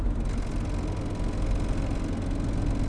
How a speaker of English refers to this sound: Man, my car sounds like it's about to blow up.